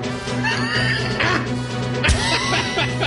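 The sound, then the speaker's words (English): A goat bleats in wavering, quavering cries that overlap and run almost continuously for a few seconds, with a brief sharp knock partway through. “The goat sound.”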